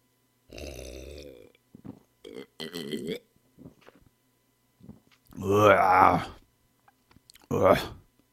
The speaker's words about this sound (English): I'm going to try to chug this. Maybe not. Maybe take 2 gulps at once. Okay. Oh.